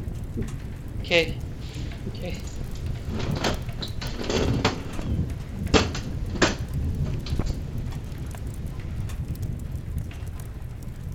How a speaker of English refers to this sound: The storm will be over soon.